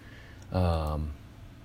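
bird, crows cawing

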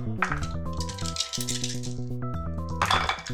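dice rolling and rattling

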